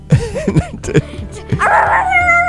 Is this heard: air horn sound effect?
no